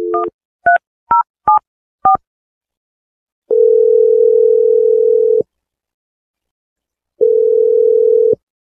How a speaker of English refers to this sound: But, okay, I'm about to dial the phone number right now.